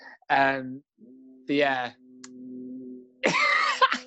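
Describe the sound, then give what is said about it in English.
A drill from building work going on outside drones in a steady, low-pitched whine for about three seconds, while three short, wordless voiced bursts rise over and around it. “So I just got some work going on outside. I don't know if you can hear. I'm like, what? Like nice little drill.”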